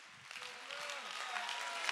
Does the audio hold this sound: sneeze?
no